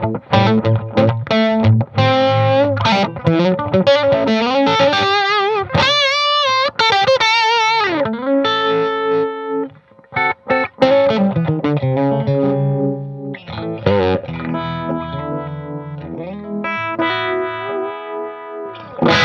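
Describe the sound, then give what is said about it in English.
An electric guitar plays a run of picked notes and sustained chords through a Dry Bell Vibe Machine pedal, made by the Croatian company Dry Bell. Its warm, wavering vibe gives the tone a subtle swirling, pulsing shimmer, loud and alone without any talking. “Vibe Machine, Dry Bell.”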